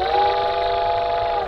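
A steam train whistle sounds in one loud, steady, sustained blast with a rich, layered tone, holding evenly for about a second and a half before tapering off. No one speaks.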